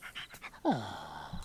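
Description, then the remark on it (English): A dog pants in quick, breathy bursts, then lets out a short whine that slides downward in pitch and trails off. “A crazy dog's trying to kill me.”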